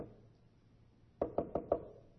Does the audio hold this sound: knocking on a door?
yes